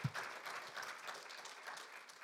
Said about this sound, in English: We're super pumped for you for doing that for the first time. So let's give a round of applause for anyone that did that for the first time.